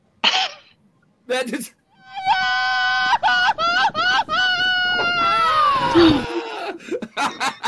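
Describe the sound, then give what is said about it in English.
A loud, drawn-out Mexican grito, a high wavering yell with rapid trilling bursts that sweeps upward and trails off, followed by a few short excited shouts. “Well, that deserves a Mexican yell.”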